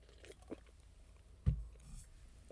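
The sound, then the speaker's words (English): A quiet sip of wine: a few faint wet mouth clicks, then a single soft gulp partway through, with no talking around it. “Another sip of wine.”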